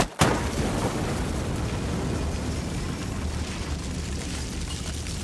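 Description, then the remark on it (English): A bomb explodes with a sudden, powerful sharp crack, blasting through a door and wall, then a dense roar of rumbling debris and crumbling rubble that stays loud and steady for several seconds afterward. “The explosion from the bomb set by Raven and Sarek ripped through the bodies of the two unsuspecting men.”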